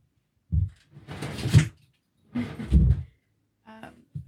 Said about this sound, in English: Wisdom wants to go outside. Look at him. Oh. Like, he's very patient. Let me open the door.